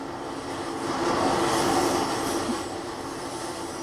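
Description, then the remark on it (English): A loud, steady mechanical roar of a train passing by a duplex, swelling slightly midway and then holding constant, with no voices over it. “Yeah, and you're like so conveniently located right by the train.”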